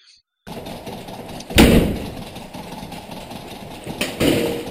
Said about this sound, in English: Man, those freaking file cabinet drawers.